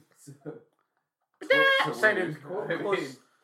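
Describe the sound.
A person imitates an owl hoot: a couple of soft, low vocal sounds, then after a pause a louder, drawn-out, wavering hooting call.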